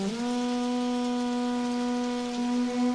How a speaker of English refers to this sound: Listen to the rain on the armor, the metal helmets. Listen how wonderful that detail is.